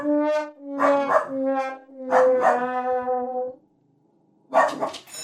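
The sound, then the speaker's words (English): A dog barks at somebody it sees, in drawn-out, whining yelps, several in quick succession and one long howling stretch, then a pause before another bark; fairly loud, with no talking. “Is dog okay over there? All right, very good. Yeah, he sees somebody.”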